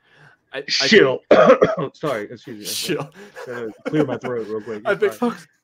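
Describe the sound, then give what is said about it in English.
Someone clears their throat in a series of rough, voiced rasps and short bursts, loud and fairly continuous for several seconds. “Clear my throat real quick.”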